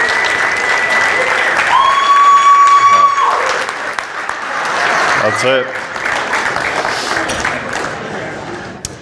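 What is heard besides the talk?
audience round of applause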